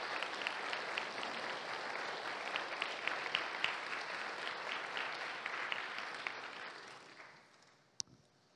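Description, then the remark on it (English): An audience claps steadily and fairly loudly for several seconds to thank its missions leadership team, a dense wash of many hands that gradually fades out, ending with one sharp tap near the close. “Can we thank our missions leadership team?”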